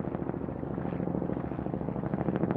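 A steady, rumbling drone of Kyrgyz military helicopters flying overhead in a Himalayan valley, with a rapid pulsing chop, fairly loud and continuous throughout, with no voices present.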